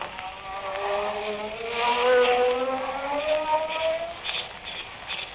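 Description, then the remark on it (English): A magic ray sound effect burning off handcuffs: a buzzing, electric whine that slowly climbs in pitch for several seconds over a hissing rush, steady and fairly loud, with no voices. “Now to burn these handcuffs off with my magic ray.”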